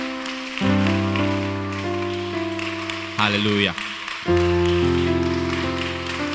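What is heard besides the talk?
audience clapping hands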